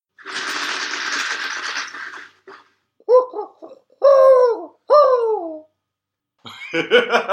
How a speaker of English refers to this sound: That's why that owl is hanging around here. It's looking for a rattlesnake.